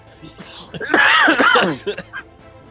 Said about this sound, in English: Why are we all coughing?